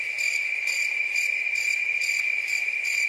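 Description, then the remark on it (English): Steady cricket chirping fills the air, a continuous high-pitched trill with rhythmic pulses repeating about every half second, fairly loud with no voices. “I think crickets are needed here.”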